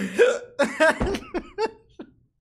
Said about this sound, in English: I haven't had hiccups in so long. I'm like super lightheaded and hiccuping.